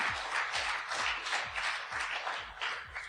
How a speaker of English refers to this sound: Let's give our moms a big round of applause. Yes.